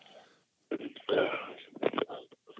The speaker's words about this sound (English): You need some of Grandpa's cough medicine. You got some honey and whiskey over there or what?